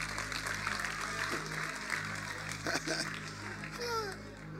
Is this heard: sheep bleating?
no